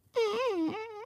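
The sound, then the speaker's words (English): A voice imitates a woman's timid, squeaky first fart with one thin, wavering whine lasting about a second, its pitch wobbling up and down before cutting off, heard alone with no speech. “It's like kind of like a, you know, kind of squeak out, kind of an insecure fart, you know what I mean?”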